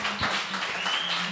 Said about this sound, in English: The big crowd at Villa Capri here applauds. It was a nice crowd here today. Very nice crowd. Saturday afternoon with a lot of people down the beach. Still a full house here.